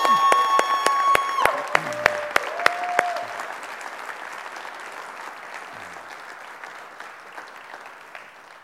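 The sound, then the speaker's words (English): An audience claps steadily for a pastor, a dense crackle of many hands that starts strong and gradually thins and fades over several seconds, with a few brief sliding, whistle-like tones early on. “Can we put our hands together for Mr.”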